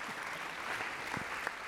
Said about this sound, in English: Good, so a round of applause for our players. Thank you.